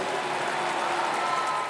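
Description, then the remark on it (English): A hyped-up basketball crowd cheering in a steady, dense roar, loud and unbroken for the whole moment, with no single voice standing out, as a speaker hypes Alexis Morris as the best point guard in the country. “So obviously you hear the hyped up crowd as well.”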